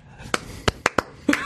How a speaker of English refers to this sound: Slow clap.